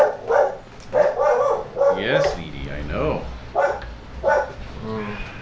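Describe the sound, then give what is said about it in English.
A dog barks in short, loud bursts, mixed with high whining yips, while a person speaks to it over the noise. “The dogs have found us.”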